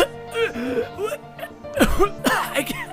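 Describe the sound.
A voice imitates choking gasps: strained, whimpering vocal sounds broken by a few harsh, breathy gulps and throat-catching bursts, fairly loud, with no words spoken.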